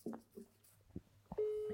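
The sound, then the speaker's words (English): A foreign-style phone ringing tone from a voice call to a phone in Denmark: after a few brief soft clicks and thuds, a steady electronic tone sounds clearly through the line and holds to the end, without interruption. “No, that's a foreign ringtone.”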